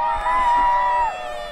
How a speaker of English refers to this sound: Any boys and girls here, give me a cheer now. Oh, come on, people. It's Christmas. I mean, he dressed as Santa. Boys and girls, give me a cheer now!